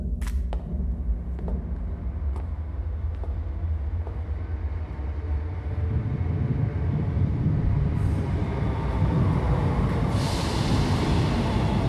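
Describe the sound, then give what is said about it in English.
A subway train rumbles steadily as it arrives at a station, building in loudness as it approaches, with sharp metallic clicks early on and a rising hiss of wheels and brakes toward the end. No one speaks. “We get on the subway, and then...”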